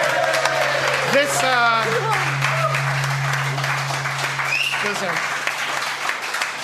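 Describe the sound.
A full round of applause, dense steady clapping running the whole length, with a few voices cheering and whooping over it and a low constant hum underneath.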